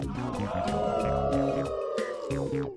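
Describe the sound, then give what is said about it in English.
A long, wavering howl of awoos swells and holds, then slides downward at the end, riding over a steady, thumping musical beat. “Such an event deserves a ripe, rousing round of awoos.”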